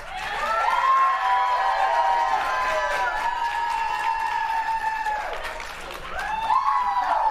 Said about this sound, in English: If you want whatever one you want, please applaud, and I will measure it on my little decibel meter. All right, please applaud right now if you want to go to the panel room.